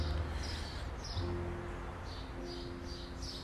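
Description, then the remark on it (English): Birds chirp repeatedly on a sunny morning, short bright calls spaced through the scene over a steady low background hum, with no one speaking. “A sunshiny morning with birds chirping and people carrying about their day on a simple Wednesday does this for me.”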